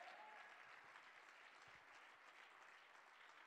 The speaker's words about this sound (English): Somebody needs to clap their hands this morning.